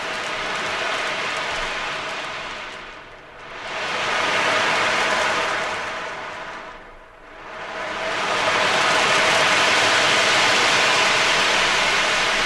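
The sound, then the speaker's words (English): A steady rushing hiss from an ocean drum imitates waves washing over a pebble beach, swelling and receding twice in slow surges before settling into a loud continuous wash. No one speaks. “Does it sound like rain on a roof, or it sounds to me like a pebble beach with the waves ebbing and flowing?”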